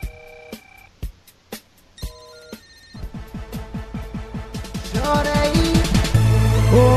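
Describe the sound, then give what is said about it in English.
A parody rap song's opening: bright, ringtone-like electronic tones chime alone, then a driving beat drops in and the music swells louder and fuller toward the end, with no vocals yet. “I'm going to play this song that I just found today.”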